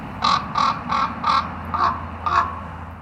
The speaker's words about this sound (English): Now let's listen to some of the natural sounds made by wild ravens. Here are some ravens in France, calling while in flight.